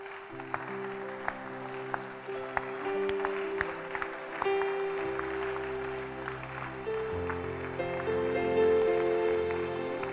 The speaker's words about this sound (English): Don't stop clapping.